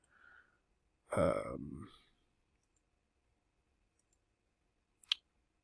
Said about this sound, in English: Yeah, I was clicking on the wrong thing.